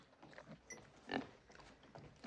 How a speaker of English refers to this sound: Suddenly the door bursts open and none other than Annie Wilkes from Misery greets him, with her pig oinking behind her.